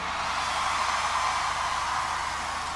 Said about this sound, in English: I don't know about you, but I'm sitting here with goosebumps listening to that, although I do have the aircon on in the studio, so it could be something to do with that as well.